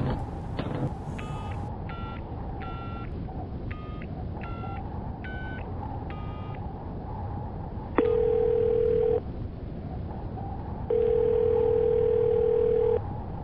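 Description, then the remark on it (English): A phone number is keyed in with a quick series of short dialing beeps, then two long, steady ringback tones sound as the call rings unanswered, going to voicemail, over a low, constant hum. “I gather that you're not picking up my calls, but you should because I'm onto something.”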